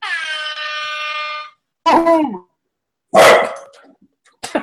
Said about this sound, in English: A dog bark.